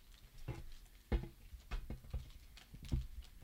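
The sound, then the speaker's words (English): A series of sharp plastic clicks from an action figure's ratcheted joints, five or six irregularly spaced snaps, fairly quiet, with no talking. “Yeah, you can kind of hear the clicking into... Oh, you can really hear it on that one.”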